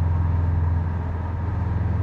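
A steady, low engine rumble fills the inside of a moving car, a constant droning hum with faint road noise and no voices, holding at an even level throughout.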